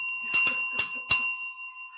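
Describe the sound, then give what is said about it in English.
A bell rings with a steady, sustained metallic tone through the whole moment, while four sharp knocks or clicks land irregularly over it. Nobody speaks. “Does anybody hear a bell ringing?”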